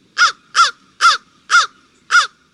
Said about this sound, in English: We did see some crows right off the bat.